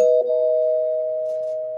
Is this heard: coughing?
no